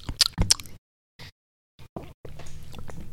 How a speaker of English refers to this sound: Maybe giant bites aren't the best thing to do when you're recording. Yeah, the mics are a little sensitive. Mm-hmm. I can edit some of it out later. Just don't chew with your mouth open and smack.